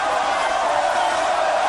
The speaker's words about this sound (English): And there's fans here in the sold-out crowd here in Madison Square Garden chanting Elroy in the direction of Crash Holly. He doesn't like that. Elroy Jetson, of course, from cartoon fame.